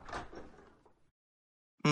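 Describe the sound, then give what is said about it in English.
A door slides or swings shut with a rough, scraping rush that fades into silence, followed at the very end by a sudden loud, harmonic tone cutting in. “I will shut that door back and move down to door number 3.”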